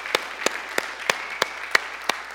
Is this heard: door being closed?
no